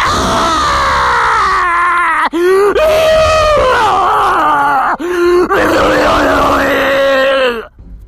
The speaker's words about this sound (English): Let's go to this next caller and please do not groan or scream into your phone.